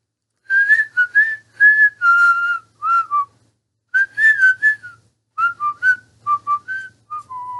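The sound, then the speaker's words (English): Kids whistle a bouncy, melodic tune in short phrases with brief pauses between them at lunchtime, clear, with a faint low hum underneath. “And we see the kids, they're all whistling.”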